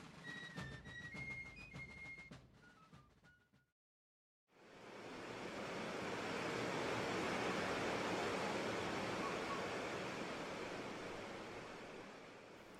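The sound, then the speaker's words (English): A loud, steady roar of a raging river's rushing water with a strong current swells in after a brief silence and churns on without pause, preceded by a few seconds of high, chirping whistle-like tones. “they were playing near a raging river when Jesse fell in and was swept downstream by the strong current”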